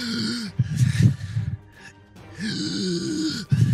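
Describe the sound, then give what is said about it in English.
A voice imitates the labored, strained breathing of a character pierced in the chest by an arrow: two long rasping, groaning breaths separated by a brief quieter pause, with wheezy harmonic tones throughout. “The arrow pierces into his chest and you hear him breathing difficult.”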